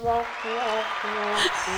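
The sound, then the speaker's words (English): A burst of canned applause with cheering voices mixed in, a steady wash of clapping noise lasting about two seconds at a fairly loud, even level, played as a sound effect by pressing a button on a mixer. “We found on our mixer that we have buttons, so now we're just gonna annoy the fuck out of you guys and start pressing buttons.”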